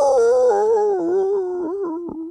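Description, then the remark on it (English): A person's voice imitates a catcall: a long, wavering, wolfish howl, held loud for a couple of seconds with slight dips in pitch near the end. “repeatedly engages in behavior, which includes catcalling and wolf whistling”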